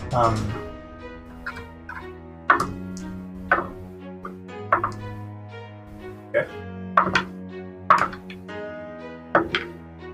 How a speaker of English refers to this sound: As … rolls dice for 23 straight minutes. Yeah. I should have got more dice. I knew it was coming.